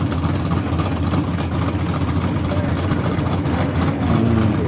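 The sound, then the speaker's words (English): Drag racing cars at a drag strip that backs up to a drift course: a loud, steady engine roar with deep low rumble that holds continuously throughout, with a hint of background chatter underneath. “They had some pretty fast cars there.”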